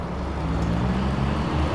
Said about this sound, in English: I'm being followed by a fire engine.